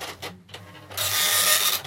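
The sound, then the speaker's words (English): A dot-matrix computer printer prints out show notes typed on a Commodore 64: short mechanical bursts give way to a loud, steady, buzzing rasp of the print head that fills the second half. “So I typed in all my show notes on the Commodore 64, and I'm going to print them out right now.”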